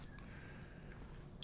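Soft, wet chewing of gum, a steady squishy mastication with a brief sharper smack near the end. No one speaks.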